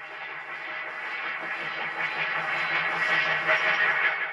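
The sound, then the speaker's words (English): A heavily warped, distorted sound effect of a train: a rumble with a steady, buzzing midrange drone and faint tonal bands. It swells slightly louder toward the end, and there is no talking. “Here's what it would sound like in our world. Ah! There's a train coming right at me!”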